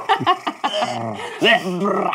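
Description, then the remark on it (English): A person's voice imitates a cat hacking up a hairball: a few quick, choppy retching bursts, then a drawn-out raspy, gurgling croak with a louder heave partway through. “Are you doing like a cat hacking over hairball?”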